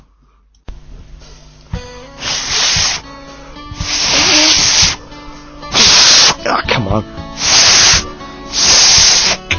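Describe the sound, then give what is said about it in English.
Repeated breathy bursts of blown air from someone trying and failing to whistle, each a loud hissy rush with no clear tone, broken by short frustrated exclamations from a voice. “I'm never gonna be able to whistle.”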